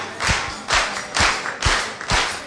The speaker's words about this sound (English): Now everybody can clap their hands. Everybody clap their hands now. Oh, that's better. Everybody can participate. Stop. Everybody clap their hands.